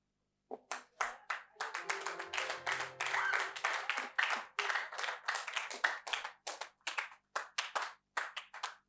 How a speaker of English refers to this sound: Thank you for clapping for me. Now clap for Jesus.